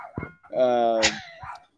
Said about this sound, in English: Dude, of all the times that I want to do this shit, right. now the dog is barking like crazy.